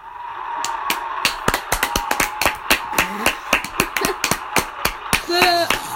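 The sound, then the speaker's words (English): A rapid, irregular series of sharp, loud hand claps made to fake slapping someone, each a crisp smack like a slap, with a short vocal sound breaking in near the end. “Guys, I didn't actually slap her. I just clapped my hand.”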